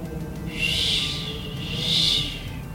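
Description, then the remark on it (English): An owl calls twice in slow succession, each cry drawn out and airy, sounding somewhat distant over a quiet, faintly rumbling background with no voices. “The distant hoot of an owl.”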